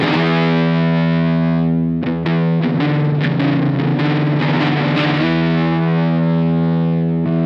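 A loud, heavily distorted Silvertone 1446 electric guitar rings out with thick sustained chords, broken midway by a burst of quick, choppy strums before settling back into a long, buzzing held chord. No voices.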